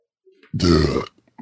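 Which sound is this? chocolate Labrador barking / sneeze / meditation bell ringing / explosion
sneeze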